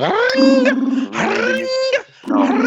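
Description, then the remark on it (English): A voice imitates a phone ringing with three loud, buzzy, warbling bursts, each rising and wavering in pitch, separated by short breaks. “Make the phone noise.”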